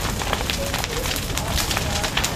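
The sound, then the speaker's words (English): A large bushfire in Australia roars and crackles continuously, a dense rush of noise broken by sharp snaps and pops, loud throughout. “And fire are the soundtrack of Australia's climate crisis.”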